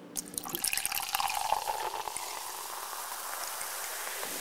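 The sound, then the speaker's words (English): Champagne that has just been popped is poured into a glass, a steady splashing stream with a bright fizzing hiss that carries on for several seconds. No one speaks. “The champagne's popped, it's poured.”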